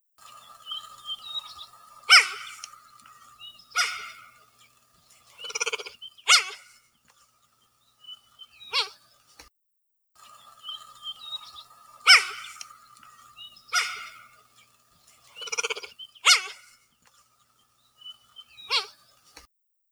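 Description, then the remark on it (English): A cheetah gives a series of sharp, high chirping yelps, bird-like and clear, spaced irregularly a second or two apart with quiet gaps between, and no voices present. “Let me pull up a vocalization of a cheetah calling.”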